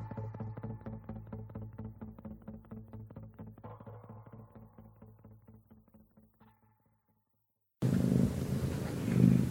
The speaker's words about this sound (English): I hear a cat.